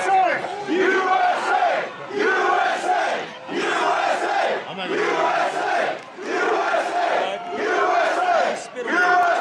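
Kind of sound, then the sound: crowd, protest crowd shouting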